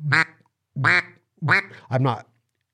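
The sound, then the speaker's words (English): Four loud quacks from a duck call, sounded in a steady rhythm with short pauses between, each a raspy, nasal burst; no talking. “I'm still obsessed with making a better version of my duck calling”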